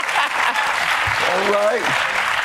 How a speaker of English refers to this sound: Yeah, I see you late clap. Okay, that's late clap over there.